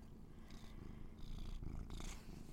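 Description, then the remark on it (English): A cat, Pravi, purrs steadily while being held, a continuous low rumbling drone with soft rhythmic pulses, no voices present. “Gonna hold you here until you meow.”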